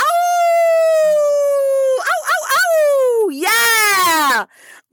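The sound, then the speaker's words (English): A person howls like a wolf, loud: one long steady wail, a few quick wavering yips, then a second howl that swoops up and trails off into silence. “You can howl at the moon.”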